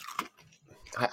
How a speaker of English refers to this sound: I'm drinking water, and for some reason I'm chewing an ice.